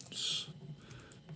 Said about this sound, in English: And then just, you know, when you type something and you think you're in the right position, but you end up typing complete fucking gibberish. I thought I was blind by every key next to it.